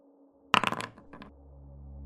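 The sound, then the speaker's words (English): Dice clatter onto a hard tabletop in a quick burst of rattling bounces, followed by a couple of softer knocks as they settle, rolled for damage in a tabletop role-playing game. The sound is fairly loud, with no talking. “But still roll that damage, because that was not a critical success.”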